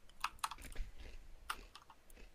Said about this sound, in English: I'm just crunching on some Lay's. I'm being a heathen. I'm having Lay's stacks instead of Pringles.